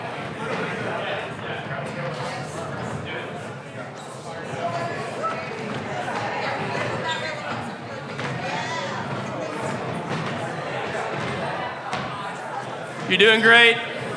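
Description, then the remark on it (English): A room full of people chattering while chairs scrape, thump and knock as they're moved out of the way so people can circle up in groups of 3 to 5, with a louder clatter near the end. “Like, literally, move chairs out of the way.”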